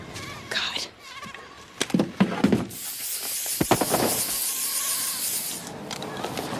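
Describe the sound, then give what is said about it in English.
A spray device called a lightweight forward area air device unit lets out one steady, bright hiss lasting about three seconds. Brief voices and clattering noises come just before and during the spray. “Lightweight forward area air device unit.”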